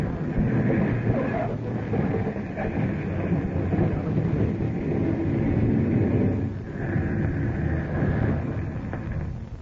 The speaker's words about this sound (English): Mr. Harding, we're coming down to land. Yeah. Hope this plane isn't too big for the landing strip.